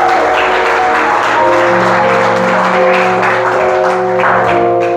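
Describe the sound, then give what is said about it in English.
A crowd claps hands in praise, a steady, dense wash of applause lasting several seconds over sustained organ-like music chords, with no voices. “Oh, hand clap of praise to you.”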